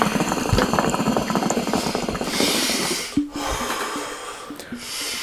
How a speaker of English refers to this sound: Alright, one last hookah dip. Hopefully it doesn't run. Test it out, see if it burns.